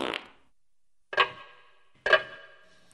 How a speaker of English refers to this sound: Oh, listen to that. You hear that ticking noise? Sounds like you're in a haunted house.